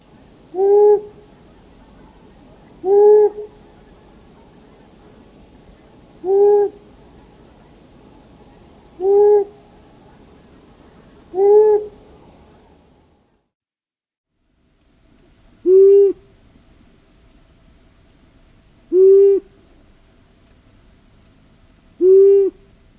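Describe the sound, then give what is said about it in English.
Low, soft owl hoots of a long-eared owl, single evenly spaced notes repeating about every two to three seconds, with a faint insect hum in the background and a brief pause midway. “So one more time, the hoots of the long-eared owl.”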